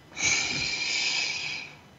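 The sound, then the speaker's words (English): A single deep breath is drawn in during a guided breathing exercise, a steady airy hiss lasting about a second and a half before tapering off, with no talking over it. “Let's take another breath.”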